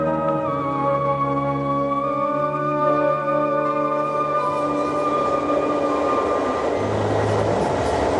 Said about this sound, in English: it's now 3 o'clock in the morning, and I'm on an Amtrak train, heading towards New York. I think right about now I'm in Syracuse, Ohio.